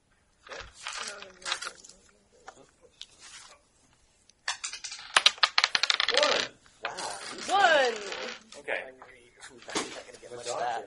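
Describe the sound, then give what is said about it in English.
Dice clatter across a hard surface for a straight intelligence roll, a quick burst of sharp, rattling clicks midway through, while people talk before, during and after the roll. “I just want to use a straight intelligence roll on this one.”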